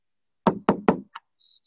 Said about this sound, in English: He peeks inside, and he sees that the person is up. There's a candle, he's learning Torah. So he knocks on the door.